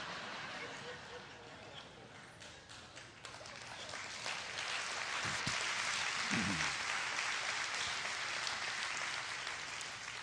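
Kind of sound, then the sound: crowd, audience clapping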